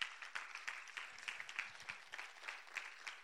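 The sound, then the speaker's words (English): A church audience applauding steadily as a clap offering to the Lord, dense overlapping claps at moderate loudness with no clear beat, sustained throughout with no talking. “Come on, let's give the Lord a good clap offering.”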